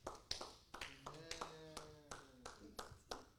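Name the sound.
one person clapping hands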